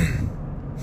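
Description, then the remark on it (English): A single brief throat clearing, a low, rough, gravelly rasp lasting under a second, with no talking over it. “I have to clear my throat once in a while because it's a good way for me to stop from lashing out or using words that I probably shouldn't be using even on this explicit podcast.”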